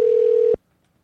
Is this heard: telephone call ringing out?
yes